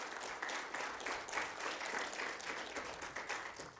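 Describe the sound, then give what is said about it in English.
An audience claps steadily in sustained applause for the band, a dense, even wash of many hands at moderate loudness without any voices standing out. “But let's give this band another good round of applause.”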